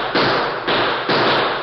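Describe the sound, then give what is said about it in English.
Three loud gunshots fire in quick succession in a radio drama, each a sharp, heavy crack followed by a rough, lingering rush of noise that runs into the next shot. No one speaks. “Gun them down, boys.”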